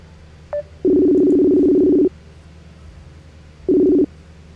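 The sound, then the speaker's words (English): Telephone call tones as a show host calls a guest: a quick short beep, then a long steady low electronic tone lasting over a second, a pause, and a second shorter tone. No one speaks. “So let me give him a buzz.”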